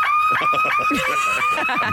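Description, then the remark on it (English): A woman in America imitates a car alarm with just her voice, hitting her throat with her hand, holding a loud, steady high-pitched tone over rapid rhythmic chopping pulses that repeat throughout, mimicking an electronic siren. “who can do an amazing impression of a car alarm, which we can hear now.”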